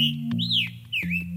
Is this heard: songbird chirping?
yes